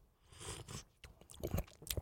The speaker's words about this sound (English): I am just guzzling down. Maybe I'll slurp it up here.